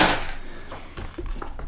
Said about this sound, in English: But don't mind my keys jingling and jangling.